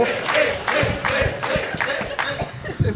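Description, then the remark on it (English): A live audience in SLC cheers and shouts together, the noise swelling in steady rhythmic bursts roughly twice a second, loud, with scattered clapping mixed in. “His microphone works. Let's cheer.”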